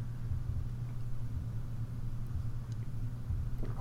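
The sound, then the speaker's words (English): A steady rainstorm outside, a continuous wash of hiss over a deep, constant rumble that holds at the same moderate level throughout, with no voices. “Like, the sounds of a storm are coming from outside.”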